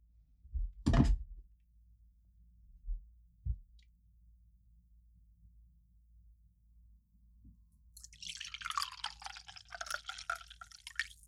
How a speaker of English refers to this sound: All right, I'm pouring my coffee.